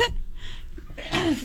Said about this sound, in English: You coughing over there? Yeah, I wish I had a button. All right, so by the way, cough button.